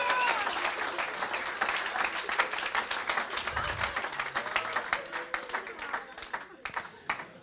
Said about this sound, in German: Aber lass uns dem Herrn einen Applaus geben.